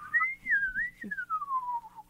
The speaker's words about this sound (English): I want to whistle like a bird. Can you? This is what I sound like when I whistle.